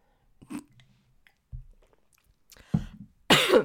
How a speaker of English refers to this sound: Now I'm going to cough.